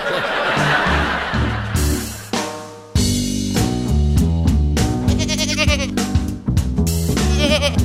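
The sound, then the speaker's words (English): Several goats bleat one after another and overlapping, loud wavering nasal cries that keep going for the whole stretch with hardly a pause. “Oh, look at the goats. The goats are here.”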